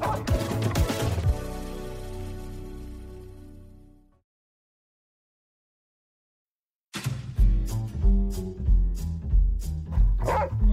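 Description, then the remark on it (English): Karelian bear dogs bark loudly in quick repeated bursts at a bear being released into the wild, reconditioning it to fear humans for the Washington Department of Fish and Wildlife. They come in after a fading sustained tone and a few seconds of silence. “Carilion Bear dogs help the Washington Department of Fish and Wildlife locate problem bears.”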